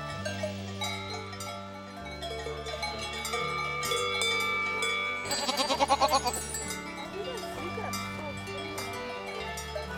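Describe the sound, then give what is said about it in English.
A tame alpine goat bleats once with a wavering, pulsing cry amid the scattered clanking of livestock bells high above the villages in the Alps, all set against a steady, sustained musical backdrop. “Take time to greet these tame alpine companions and listen to their random symphony of bells.”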